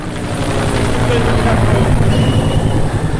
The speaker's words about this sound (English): Meredith said that these helicopters were flying really low overhead the whole time she was there.